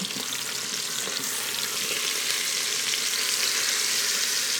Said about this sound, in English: I'm totally sizzling some steak, so sorry, also.